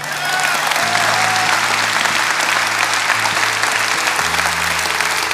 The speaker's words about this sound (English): Thank you. So let's do this. Yeah, we're going to clap.